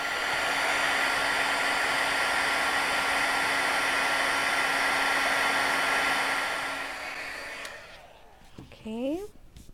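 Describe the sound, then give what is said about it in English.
A heat tool blows with a loud, steady whoosh and an underlying motor hum for about eight seconds, heat setting Formula 49 just applied to a gourd shell with a cotton round, then shuts off, followed by a brief bit of speech. “So I'm just applying it with a cotton round, and I'm going to go ahead and heat set it.”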